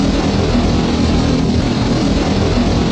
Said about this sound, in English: I'm going to have to eventually insert something with the hypno-toad sound in there. Because if you have something that's hypno, you are legally required to do so, yes.